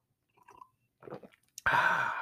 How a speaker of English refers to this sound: Excuse me, sip of coffee part two.